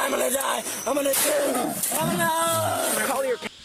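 A tiger that has just been shot growls in long, wavering, strained moans that rise and fall, loud, running almost continuously for a few seconds before cutting off.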